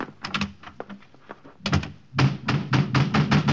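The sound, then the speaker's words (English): Repeated knocking on a wooden door: a quicker run of lighter raps, a short pause, then a louder, insistent series of heavy thuds, with no talking. “Open up. In a minute.”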